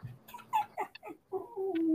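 A dog gives a quick series of short, high yelping barks, then a longer drawn-out whine, with no one talking.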